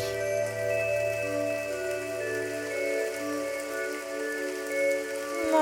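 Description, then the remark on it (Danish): A steady wash of rain falls continuously, blended with sustained, humming drone-like tones underneath. There is no speech, and the level stays even throughout. “Ej, se, nu regner det i paradis.”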